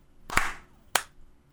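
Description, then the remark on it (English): Two sharp hand claps about half a second apart, made to sync recordings, the first a bit fuller with a brief ringing tail, the second crisp and quick. No voices, just faint background hiss. “Who's clapping after go?”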